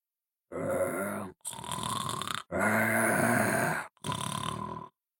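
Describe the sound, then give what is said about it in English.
A large brown bear snores inside a cave in the snow: a low, growling snore rumbles in four rough, rasping bursts separated by brief pauses, loud, with no talking. “And across the snow floated a very low, growling snore.”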